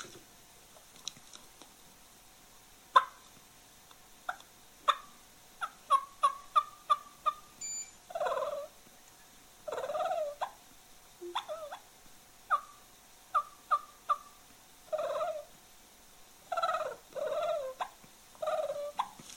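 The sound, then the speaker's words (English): A hand-operated cluck and purr turkey call, last used in competition about three years ago, imitates a hen, with sharp, evenly spaced clucks followed by rolling, throaty purrs, repeated in clear bursts with short pauses and no talking. “But this is the last cluck and purr call that I actually had in competition, I guess, 3 years ago.”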